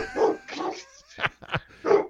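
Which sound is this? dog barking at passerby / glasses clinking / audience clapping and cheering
dog barking at passerby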